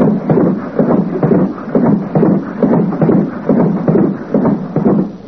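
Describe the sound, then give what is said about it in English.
A clock ticks steadily and loudly, about two dull, knocking beats per second, alone with no voices, in an even rhythm throughout. “Oh, boy, listen to that clock ticking away.”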